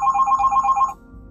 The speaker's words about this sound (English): You guys, my phone is ringing. I'm sorry about that. And my phone is far away from me. I cannot reach it right now.